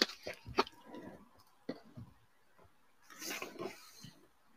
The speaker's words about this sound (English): So with that, let you take a drink of water and see if there is anyone who has a question that they'd like to pose.